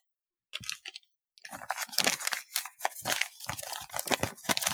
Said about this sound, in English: I'm just gonna rustle a little paper here.